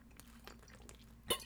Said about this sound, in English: Let me get another drink of water.